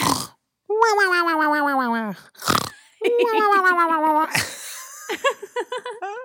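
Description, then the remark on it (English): A person imitates the snoring of Pansy with drawn-out, wavering, throaty vocal tones broken by noisy breathy rasps, ending in a few short choppy snorts. “Do a drawer snore!”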